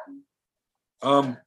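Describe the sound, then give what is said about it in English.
A female dog gives one loud bark after a brief, faint sound and a moment of silence. “She's barking.”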